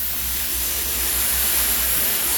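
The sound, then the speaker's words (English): A voice makes a long, steady sibilant hiss, a loud unbroken 'sss' that holds at an even level for a couple of seconds with no words spoken. “And he just looks at you, and there's, like, a sibilant hiss, like...”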